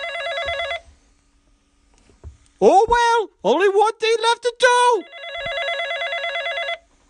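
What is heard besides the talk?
telephone bell ringing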